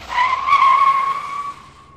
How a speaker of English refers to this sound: He jumped into his car and took off for the address of the church in Manhattan as quickly as he could. He stopped his car with a screech